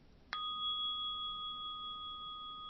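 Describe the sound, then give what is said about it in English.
A single strike of a small bell rings out clearly, its bright tone sustaining steadily and evenly for a couple of seconds without fading much, with no voices present. “Say we got a little, like a little bell, right? We have this little bell.”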